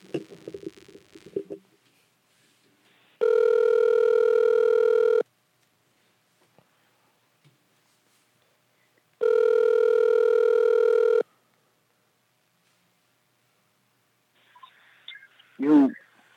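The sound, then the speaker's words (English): A phone call ringing out: two long, steady electronic ring tones about two seconds each, separated by a pause, followed by a brief rustle and a short burst of a voice picking up. “We got you on the line, man.”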